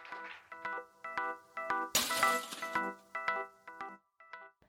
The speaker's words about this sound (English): The explosion of the sliding glass door scared the dog.